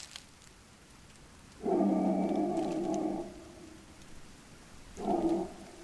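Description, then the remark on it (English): A man howls twice in the desert at night, a long sustained wail followed by a shorter one a couple of seconds later, loud against a faint hiss of background noise. “It is now I hear the howls and look up to a black sky that has never seen stars.”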